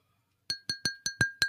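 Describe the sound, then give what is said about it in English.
A drinking glass is tapped six times in quick, even succession, each bright ringing clink fading briefly before the next. The sound is clear, with no talking. “Sounds empty, though. Well, that was the can. The glass.”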